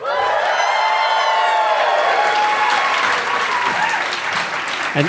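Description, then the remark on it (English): A packed live audience at the Bell House in Gowanus, Brooklyn, erupts in loud, sustained cheering and applause, dense clapping mixed with shouts and whoops, holding steady for several seconds before easing slightly at the end. “So let us know that you're packed right now.”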